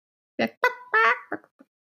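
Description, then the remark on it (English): A person imitates a chicken with a quick run of squawky, clucking bursts, one drawn-out call in the middle, then a few short trailing clucks, fairly loud. “Two, endless chicken chirping.”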